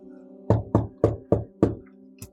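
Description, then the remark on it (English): Five firm knocks on a wooden bedchamber door in a steady rhythm, fairly loud, followed by a faint short thud, over a low steady hum. “Which one of you idiots is knocking at my bedchamber?”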